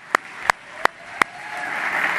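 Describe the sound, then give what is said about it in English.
A church audience's round of applause, honoring a church tech worker, begins as four sharp, evenly spaced claps, then swells into a soft, building wash of many hands clapping together. No one speaks. “I think that deserves another round of applause.”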